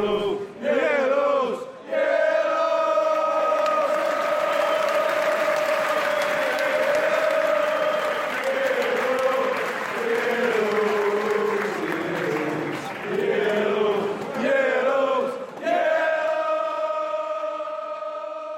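A large crowd of Mansfield Town football supporters sings the 'Yellows' chant together, loud and sustained with a rough, droning melody, pausing briefly near the start and again toward the end before picking back up.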